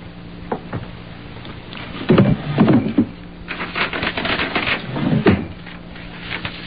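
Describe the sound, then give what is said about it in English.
A wooden drawer in a table by a window, holding a pen and hotel writing paper, slides open with a scraping rumble, followed by rattling and a final thud as it's pushed shut, over a low steady hum with no one speaking. “In that drawer, the table by the window, there's a pen and some hotel writing paper. Go get it and sit there.”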